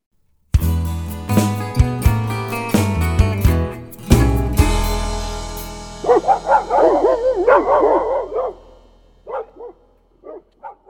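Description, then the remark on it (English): A short burst of music gives way to hound dogs barking and baying, several long, wavering howls overlapping loudly, then a few scattered barks trailing off. “Oh, yeah, them old hound dogs are barking at us”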